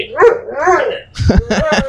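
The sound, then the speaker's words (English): A dog whines and yips in rising, wavering tones, then breaks into a quick run of three or four sharp, loud barks, with no one talking. “Well, and Aaron's dogs when we're there.”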